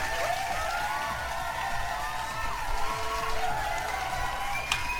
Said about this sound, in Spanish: Un pinche aplauso, banda.